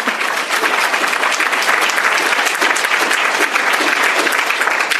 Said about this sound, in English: That's why we had to reform the system, and in partnership with Mayor Lori Lightfoot and the City Council, we tackled the issue head-on, passing our first ordinance of reform in September. You can clap for that.